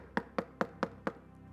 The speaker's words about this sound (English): And it's in that moment that he begins to think, who is knocking on my door, not knowing that downstairs is one of his neighbors who is in need of bread? And at midnight, he came to his house and banged on his door for bread.